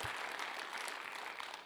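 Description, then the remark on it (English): An audience applauds, many hands clapping together in a dense, steady wash of crisp claps that holds an even loudness throughout, with no voices heard. “Yeah, clap like you mean it.”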